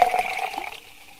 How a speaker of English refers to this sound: Pour a shot of the beer and just do it as a shot.